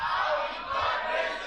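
Many voices of an audience shout together at once at a preacher's call, a loud, sustained roar of a crowd, broad and steady across the whole moment with slight swells in volume.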